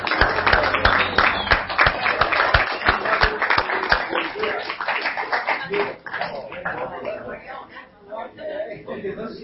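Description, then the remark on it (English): A crowd claps together in honor of mothers, a dense burst of applause that gradually thins out, with voices murmuring and chattering underneath as the clapping fades. “Let's give moms and mothers a hand here.”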